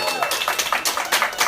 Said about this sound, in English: I mean, you just take it all in, hearing the crowd cheering and stuff.